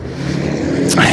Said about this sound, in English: All right, we're back in traffic. Time to use the big boy voice.